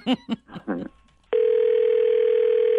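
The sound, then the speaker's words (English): A short burst of voice gives way to a steady, continuous telephone ringing tone on an outgoing call, a loud, unbroken electronic hum that holds to the end. “This is where we make the call.”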